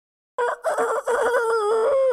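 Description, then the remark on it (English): A person imitates a rooster's crow, a loud cock-a-doodle-doo with a short choppy start rising into a long sustained tonal wail, with no other talking. “Y'all want to hear my fucking rooster crow?”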